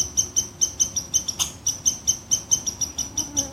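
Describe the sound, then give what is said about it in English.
A squirrel's alarm call: a steady, rapid series of sharp, high-pitched chirps, roughly four per second, repeating evenly with no voices present. “Now I can let the squirrel know I mean no harm through non-reaction to the alarm call.”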